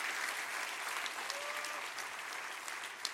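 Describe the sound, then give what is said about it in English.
An audience claps their hands together in a steady, sustained wash of applause, dense and continuous with no voices standing out. “Come on, clap your hands.”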